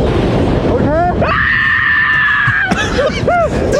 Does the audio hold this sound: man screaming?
yes